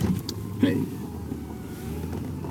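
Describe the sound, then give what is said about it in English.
A pickup truck engine hums steadily at low speed while backing up on a road, a constant low rumble with a brief murmur of voice early on. “Okay, so now I'm backing up in my truck.”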